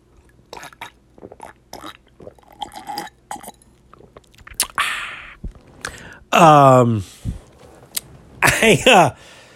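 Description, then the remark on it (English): Someone sips iced tea: small clicks and swallowing noises, then two loud, throaty, burp-like gulps or satisfied exhales near the end. No one speaks. “And I'm going to tell you as soon as I take a sip from my iced tea.”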